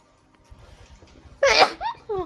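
A single sharp, loud sneeze bursts out after a quiet stretch of low rumbling, followed by a couple of short voiced sounds.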